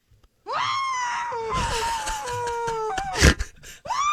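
A long, sustained muffled scream, as if into a pillow, holding one pitch for a couple of seconds, then a sharp gasping breath and the start of another cry.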